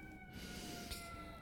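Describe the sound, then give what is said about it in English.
A faint emergency vehicle siren in New York holds steady, layered tones over a wash of city background noise, continuous throughout, with no one speaking. “You think of me and this siren that it apparently everyone is dead.”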